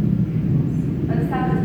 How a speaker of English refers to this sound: It sounds like a subway on the roof. Okay. I thought it was the microphone.